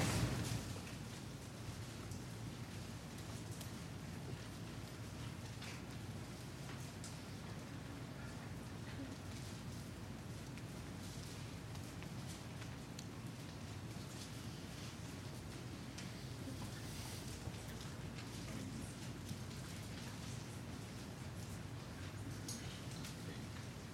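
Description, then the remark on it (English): Steady, soft rustling of many Bible pages being turned at once, a continuous papery hiss with scattered small crackles, holding an even level throughout with no talking. “That's the best sound, I think, in the whole, one of the best sounds in the whole wide world. That rustling.”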